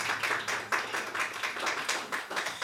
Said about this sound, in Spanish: Vamos a dar palmas al Señor.